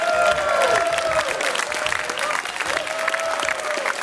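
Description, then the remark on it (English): A live studio audience at a radio broadcast on the Tulane University campus in New Orleans applauds steadily, dense overlapping clapping that stays loud throughout, with a few sliding whistles and cheers rising above the crowd. “Thank you so much for that round of applause.”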